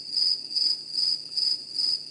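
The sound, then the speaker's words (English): Crickets chirp in steady, evenly spaced pulses, a high shrill trill repeating about twice a second at moderate volume with no voices around it. “Yeah, that's all I hear is crickets over there.”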